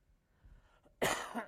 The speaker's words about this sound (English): Excuse me. I did not cough until I got up here. Isn't that how it goes?